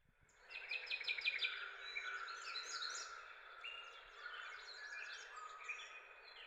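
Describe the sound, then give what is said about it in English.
A dense, continuous chorus of programmed electronic bird chirps and trills from a toy bird, many overlapping tweets layered together at steady moderate loudness, with no talking. “What aviary are you at where it's like that? There's so many birds.”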